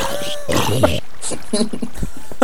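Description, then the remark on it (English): A zombie growls in a burst of harsh, rasping snarls, followed by several shorter guttural grunts in an uneven rhythm, fairly loud throughout. “I heard a zombie.”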